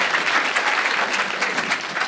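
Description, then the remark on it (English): Steady audience applause fills the whole stretch, a dense, even patter of many hands clapping at a fairly loud level without pausing, and no voices stand out over it. “Give them a big round of applause for your support, ladies and gentlemen.”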